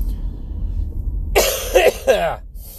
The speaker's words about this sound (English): Been dealing with this coughing shit for like a week. Oh my gosh. I feel fine, but it's just Phlegm City.